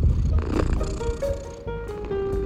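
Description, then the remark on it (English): Sculpin, a very small neighborhood cat, purrs with a steady low rumbling vibration that continues throughout, with faint higher tonal sounds drifting over it. “Sculpin is the smallest cat I have ever met.”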